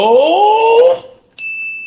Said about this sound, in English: Get your bell ready